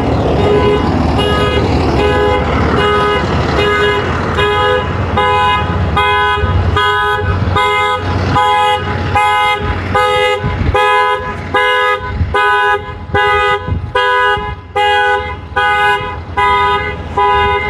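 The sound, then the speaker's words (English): A car alarm honks loudly and insistently, its horn blaring in steady, rapid pulses that repeat without a break for the whole stretch, with nothing else competing, on a sunny, clear day of about 18 to 19 degrees with a little wind. “And that guy's alarm is really loud.”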